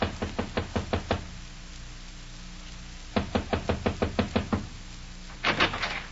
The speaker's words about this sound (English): Yeah, but if you won't knock on that door, I will.